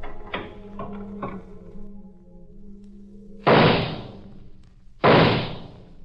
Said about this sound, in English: I stopped for a second outside her door, long enough to catch my breath and get the gun out of my pocket. Then I opened the door.